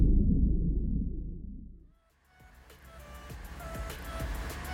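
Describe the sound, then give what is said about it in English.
A car engine rumbles low and steady for about two seconds, then cuts out, followed by a quieter stretch of clicks and faint mechanical whirring. “Okay, engine's hot. Ready for takeoff.”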